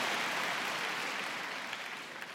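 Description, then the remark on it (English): Scattered applause from a crowd fills the moment, a dense patter of hand claps that stays steady and slowly thins out, sounding lukewarm rather than enthusiastic, with no voices over it. “Thank you for that half-hearted hand clapping.”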